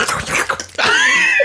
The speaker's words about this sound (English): Phoebe's just slurping water. We hit record and my dog's like...